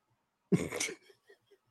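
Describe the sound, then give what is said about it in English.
A single harsh throat clearing lasting about half a second, followed by a few faint, short throaty sounds trailing off into quiet. No one speaks. “I need to clear my throat.”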